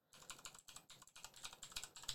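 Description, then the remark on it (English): Rapid, steady typing on a computer keyboard, a run of crisp clicking keystrokes with brief uneven pauses and no voices. “While I'm typing this stuff back in here.”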